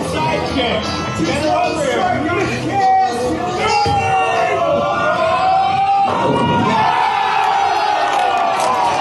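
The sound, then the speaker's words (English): A loud crowd at a local bowling league jeers and yells nonstop as a bowler takes one roll and knocks down all 10 pins, many voices shouting and hollering over one another, with drawn-out whoops rising above the noisy din. “You can't see it, but I knocked down all 10 pins in front of a jeering crowd.”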